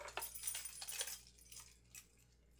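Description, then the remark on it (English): The keys to Pushman Mansion jingle and clink as they are handed over, a quick metallic flurry for about a second, then a few softer rattles before fading. Fairly quiet, with no one talking. “I still say you're off your rockers for going in there, but here's the keys.”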